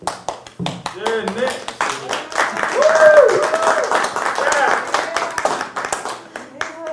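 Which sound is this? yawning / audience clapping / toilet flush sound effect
audience clapping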